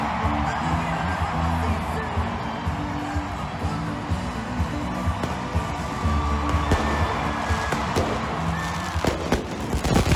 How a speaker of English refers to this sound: Oh my God! Oh my God! The fireworks are shooting into the crowd.